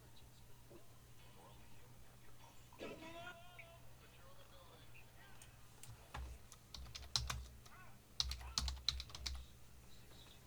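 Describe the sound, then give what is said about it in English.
Computer keyboard typing in irregular bursts of crisp keystrokes, mostly in the second half, over a steady low electrical hum, with a faint, brief voice earlier on. “I hear I hear somebody typing every now and then.”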